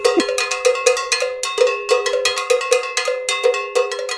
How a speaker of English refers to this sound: The cowbell's a fun thing to talk about. It is.